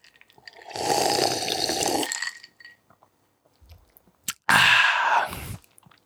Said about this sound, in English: Let me sip.